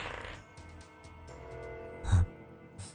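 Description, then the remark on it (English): A die is rolled: a short rattle of small clicks and taps, then a sharper clatter as it lands, followed by one last light knock. “So, let me roll one terrifying dice.”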